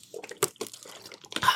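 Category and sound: human body sound, sipping water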